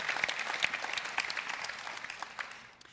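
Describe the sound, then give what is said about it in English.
An audience applauds in a dense, steady patter of many hands clapping, with a few sharper claps standing out, tapering off slightly toward the end. No one speaks. “Do you think there's anything you want to clap for that?”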